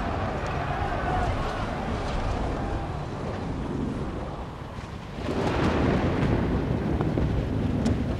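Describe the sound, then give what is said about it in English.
Thunder rumbles in a deep, continuous roll beneath gusty, wind-like noise, then swells noticeably louder and closer partway through as storm clouds suddenly gather in a previously clear sky and a storm approaches. “That's, what? Storm clouds? It was clear skies a second ago.”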